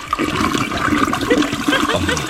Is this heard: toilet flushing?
yes